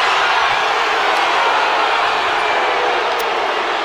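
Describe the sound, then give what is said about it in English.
A basketball arena crowd boos loudly and steadily after a push foul is called, a dense, unbroken wall of voices that holds at the same level throughout with no speech over it. “I mean, the crowd's booing, but I don't know how you don't call that.”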